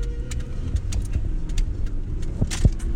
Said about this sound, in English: Also probably going to be in the background is the car.